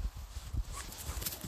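A dog runs across a hard floor in the background, its quick, uneven paw thumps and patters repeating in a steady rhythm over a soft background hiss, moderately loud.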